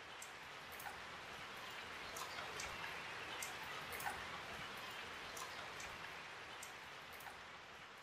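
heavy rain falling

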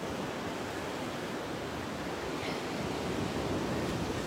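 ocean waves

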